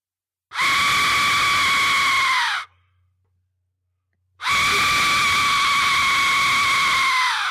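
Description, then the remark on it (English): An Aztec death whistle is blown twice, each blast a loud, harsh, scream-like shriek lasting about two seconds, with a short silence between and the pitch sagging slightly as each one ends. “I've been waiting all night to use the Aztec death whistle, which just came in the mail 2 days ago for this very show.”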